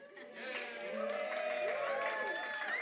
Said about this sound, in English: You're cheering now, but the Israelites were like, the shepherd?